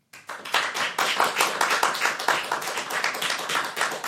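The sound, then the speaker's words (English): An audience applauds to vote for pirates in a pirates-versus-ninjas debate, many hands clapping in a dense, steady patter that starts quickly and holds at a fairly loud level for several seconds, with no voices over it. “So if you think that pirates would win in this fight, please applaud now.”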